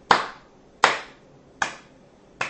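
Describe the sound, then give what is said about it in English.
A single person clapping slowly and deliberately, four sharp hand claps spaced evenly about three-quarters of a second apart, clear with no voices. “A round of applause from me. Just a slow clap.”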